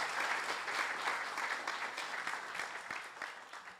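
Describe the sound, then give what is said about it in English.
Steady audience applause for a speaker at the end of an author talk at a bookstore, a dense patter of many hands clapping at once, sustained and fairly loud throughout with no voices standing out. “Can we give one more round of applause for Dr. Gelfand?”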